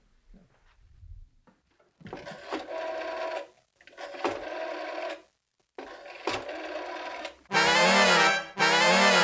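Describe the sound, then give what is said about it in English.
A phone call being dialed, with a run of electronic tones in short bursts, followed by two loud, buzzing rings. No one speaks. “So I'll call him.”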